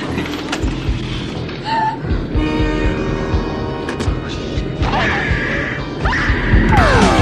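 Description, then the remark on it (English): Dogs gnaw on bones with loud, irregular crunching and grinding, punctuated by sharp clacks and a few thin squeaky tones, continuing steadily with no one talking. “If you guys hear, like, it sounds like bones grinding in the back of in the background here.”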